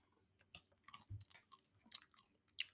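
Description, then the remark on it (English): Crisp munching of Trader Joe's roasted salted sunflower seeds, with sharp crunches and cracks at irregular intervals and a soft low thud mid-way, no talking. “I'm about to open them up. And I'm just going to munch on a few for you.”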